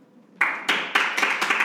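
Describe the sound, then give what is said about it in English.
A short burst of audience clapping starts after a brief quiet moment, with about five sharp, steady beats that ring out loud and bright, and no voices. “Chris Murphy, please clap.”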